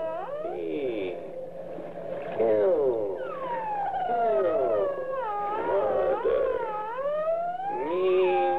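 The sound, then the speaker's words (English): Dolphin squeaks slowed down into long, eerie, wavering moans that glide up and down in pitch, playing continuously and loudly for several seconds with no talking over them. “The high squeak of that dolphin when it slowed down this way.”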